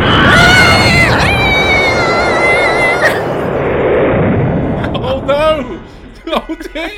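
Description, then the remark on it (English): A gunpowder explosion roars with dense, crackling noise from the start, shrill whistling tones wailing over it, then fades as excited voices break in near the end. “Be careful with that gunpowder.”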